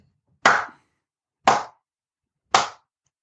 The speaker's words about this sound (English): Slow clap for Twitter customer service, ladies and gentlemen.